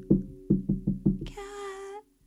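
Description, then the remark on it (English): Six quick, evenly spaced knocks on a door, reenacted, rap out fairly loud, followed by a brief sustained, raspy tone that cuts off abruptly. “Literally 3 o'clock in the morning, knocking on my door.”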